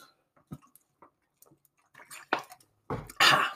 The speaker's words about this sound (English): Sorry, guys, I've got to take another swig of water.